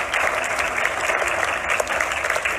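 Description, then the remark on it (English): Steady, dense applause from an audience as two people come up onto a stage, a continuous wash of many hands clapping at once, fairly loud, with no talking over it. “Let's give them a massive round of applause as they come up.”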